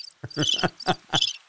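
Crickets chirp in a short sound effect, about four bright, evenly spaced bursts, fairly loud, with no talking alongside.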